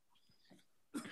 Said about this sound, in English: Well, I'd say interesting cough, Fauci. I hope you didn't get any COVID.